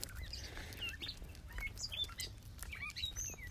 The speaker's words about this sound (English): That's bird song right there.